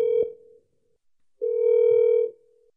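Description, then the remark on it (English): A phone call being placed to an uncle during a recording: a steady electronic ringback tone sounds twice, a short clipped burst and then a longer one, clear with silence between and no voices; the call goes unanswered. “I'm going to call him while we're recording this because he listens to the pod.”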